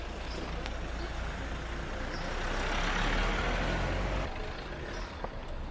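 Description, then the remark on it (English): An old heavy diesel vehicle rumbles past close by someone walking along the road, its deep engine drone swelling to a peak mid-way before easing off, with a steady low road roar throughout. “Diesel old clangers.”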